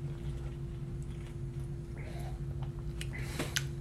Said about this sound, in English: First sip here.